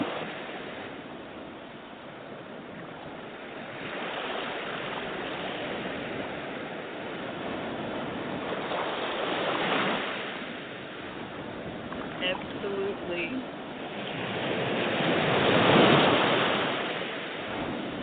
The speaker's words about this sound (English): Beach waves. Yes. I knew you would be able to get that. Ocean waves. You are absolutely right. Ocean waves.